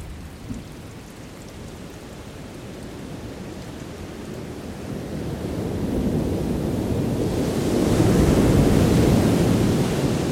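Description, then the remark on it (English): Steady downpour of a tropical thunderstorm during the wet season in the Tambopata region of the Amazon rainforest, bordering Peru and Bolivia: a dense wash of rain with a deep low rumble beneath it, swelling noticeably louder and heavier over the second half. “Thunderstorm during the wet season in the Tambopata region of the Amazon rainforest, bordering Peru and Bolivia.”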